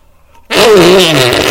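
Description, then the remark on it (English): After a brief silence, a loud, buzzy fart noise erupts and holds for about a second, its wavering pitch suggesting someone is blowing it with their mouth. “Men like fart noises.”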